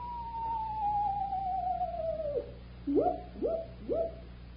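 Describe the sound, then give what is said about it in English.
Imitated owl hoots: one long, sliding call that drops in pitch, then three short rising hoots in quick, even succession. Moderately loud against a low steady hum, with no talking. “There's two owls.”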